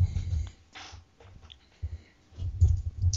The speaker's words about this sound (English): Dude, can you pound that keyboard any louder? You can hear that? Yes, I can.